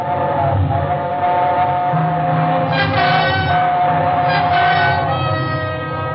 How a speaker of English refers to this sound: It was only the train going through the tunnel, but it brought it all back. A scream and the train roaring by, the whole house shaking.